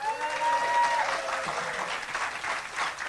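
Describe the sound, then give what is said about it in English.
Audience applause: a steady, dense wash of many hands clapping that holds at an even, moderate loudness for about three seconds, with a thin whistle-like tone over the first second. “You know, just the fact that we're protected by audio and we don't have faces and so forth out there, let's see if anybody made a meaningful epiphany or change in their life this week by applause.”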